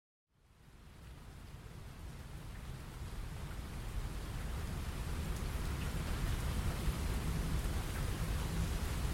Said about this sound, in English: It was raining on Michael's last day of vacation. He wanted to play on the beach one more time, but the rain didn't stop.